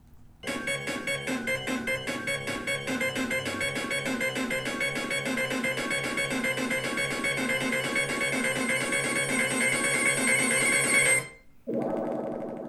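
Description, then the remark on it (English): The Sonic 1 underwater drowning countdown music plays alone: a bright, chiptune-style loop of rapid, rhythmic pulsing notes that speeds with urgency, cutting off abruptly near the end before a brief different tone. “Here's the Sonic 1 drowning music.”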